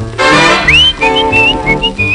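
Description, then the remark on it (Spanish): Bright human whistling carries a lively melody in a series of short rising and sliding notes, riding over a full band accompaniment that plays loud and steady throughout. “A mi chiquita yo le chiflaba, y a la ventana ella se asomaba”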